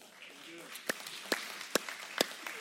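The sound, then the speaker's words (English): Sparse, scattered claps from seven people, four or five sharp slaps spaced irregularly, over a faint murmur of crowd noise; the clapping is thin and unenthusiastic rather than full applause. “Seven people are clapping and I'm excited.”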